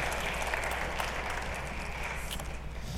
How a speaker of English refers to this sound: Can you give her a round of applause? Awesome.